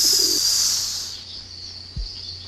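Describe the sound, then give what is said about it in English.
A brief, low cooing bird call near the start as a person plays with the bird, heard over a steady bright hiss that fades, followed by a soft thump; no one speaks. “Okay, so our other professor's playing with the bird.”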